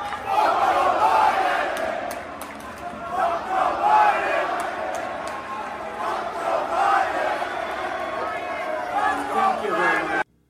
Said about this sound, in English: Trump is cheering it on. And then they start screaming, fuck Joe Biden, and you can see them screaming, fuck Joe Biden. You could see their mouths saying, fuck Joe Biden.